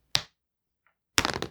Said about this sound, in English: Let's roll the dice and see who descends and ascends first.